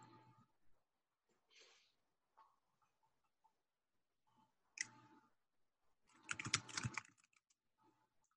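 Quiet computer keyboard typing heard over a video call, with scattered key clicks, building to a dense, louder burst of rapid keystrokes near the end before trailing off into a few isolated taps.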